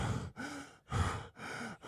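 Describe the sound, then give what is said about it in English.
A person imitates heavy panting, as when doubled over with hands on knees after going up two ramps, drawing four loud, ragged breaths in quick succession, alternating harsh gasps and exhales, with no talking. “Yeah, it's like breathing through a straw. No, I was literally doubled over, my hands on my knees, leaned over, doing the whole.”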